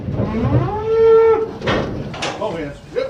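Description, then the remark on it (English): A cow lets out a long, loud moo that rises and holds a steady tone before fading, followed by some rustling and clattering noises. “It's that time of year when we're loading trailers and we're hauling cattle.”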